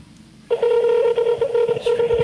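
Electronic telephone keypad tones start abruptly and run almost unbroken to the end, a loud, steady mid-pitched beeping with only brief dips between presses and a faint low rumble underneath.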